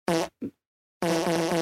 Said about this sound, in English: Why would that be a fart, though? That sounds painful. If you've ever farted like that, that sounds like it hurt.